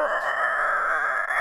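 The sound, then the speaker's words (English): A person imitates a very deep growl with their voice: one sustained, rough, continuous vocal rumble lasting over a second, loud, with no words spoken. “You hear a noise that sounds like a very deep growl.”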